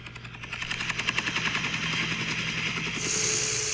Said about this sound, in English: Is that a helicopter? It's a helicopter. The joy in your eyes. It's like helicopter.